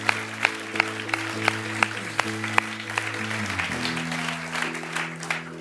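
An audience claps steadily for several seconds, with a few sharper, louder claps standing out from the wash of applause, all over a sustained low musical tone that shifts pitch partway through.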